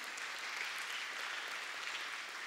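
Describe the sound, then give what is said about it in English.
An audience applauds, steady dense clapping from many hands sustained throughout without pause, a broad crackling wash of sound with no voices standing out. “Now that deserves an applause.”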